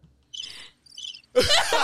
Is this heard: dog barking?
no